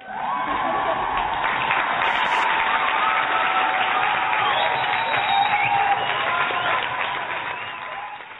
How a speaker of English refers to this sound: So hit the round of applause for Gypsy Rose.